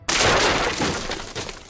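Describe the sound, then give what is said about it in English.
A stack of river rocks topples in a sudden, loud crash, followed by a dense clatter of hard pieces tumbling and knocking together that gradually thins out over about two seconds. “And I prestidigitate the sound of like a stack of river rocks falling over.”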